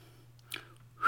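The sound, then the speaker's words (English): A sharp breath is drawn, then a person starts a bright, rising whistle used as a segment jingle. The whistle is loud but cut off almost at once, over a faint steady low hum. “We had a brief moment before we started about why we do the Wilf Whistle.”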